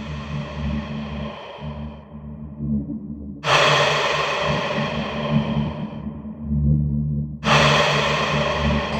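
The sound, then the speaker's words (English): Two loud, heavy breaths surge in about four seconds apart, each a harsh rush of air that slowly fades, over a low steady droning hum with no talking. “You're breathing hard, Alpha.”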